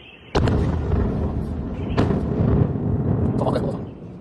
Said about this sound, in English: An explosion rocked a petrochemical plant in Shanghai this weekend. The incident sparked at around 4 a.m. Saturday. At least one person died in the blast. Another suffered injuries.